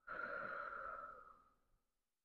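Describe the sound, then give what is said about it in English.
A single long, breathy exhale through the mouth during a guided breathing exercise with eyes closed, steady at first, then tapering off into silence over about a second and a half. “Breathe out of the mouth.”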